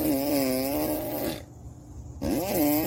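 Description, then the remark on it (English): A child's voice imitates a lawnmower with a buzzy, droning hum that wavers in pitch, breaks off briefly, then revs back up in rising and falling sweeps. “Kid perfectly imitating the sound of a lawnmower.”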